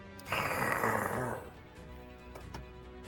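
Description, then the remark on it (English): A person lets out one loud, rough growl, imitating an angry animal, lasting about a second before fading into quiet room noise. “Okay, it is afraid of you now, and you are going to growl”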